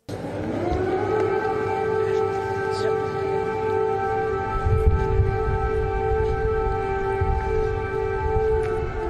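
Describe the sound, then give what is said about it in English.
A loud, steady air raid siren wails continuously in Kyiv, Ukraine, its sustained tone holding for the full length with layered harmonics, over a rumble of background noise and faint crowd murmur. “Air raid sirens are blaring, and Joe stays cool as a cucumber”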